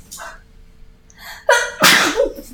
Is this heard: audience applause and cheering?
no